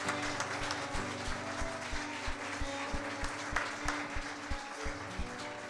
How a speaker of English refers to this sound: If you felt the Lord in this place today, will you give him one more hand clap of praise?